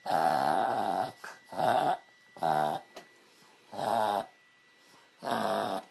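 A pug reverse sneezing: five loud, harsh honking snorts in a steady series, each a rasping gasp under a second long, separated by short pauses, with no voices.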